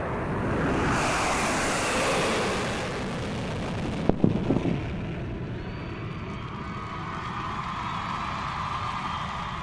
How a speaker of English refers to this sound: If you've ever seen an air show, you may have heard a sonic boom from a plane breaking the sound barrier.